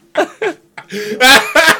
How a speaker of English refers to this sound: He put the tissue over his nose and then coughed.